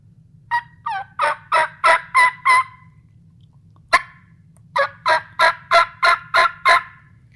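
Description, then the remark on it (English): Two runs of spring turkey yelps blown on a mouth call held in the roof of the mouth, a lengthened-out cluck; each a steady rhythmic string of about seven or eight raspy notes, separated by a short pause and a sharp click, over a low constant hum. “the call everybody thinks of when they think of turkey calling in the spring is going to be the yelp”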